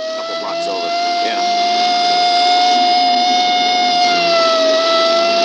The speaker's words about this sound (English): And then later, when they were in pursuit of that taxi cab. And that was the old-fashioned siren. Remember, I can remember those sirens very clearly.